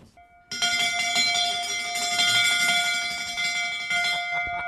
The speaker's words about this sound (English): There's so much brass, including, of course, the big brass bell. Can we hear the bell?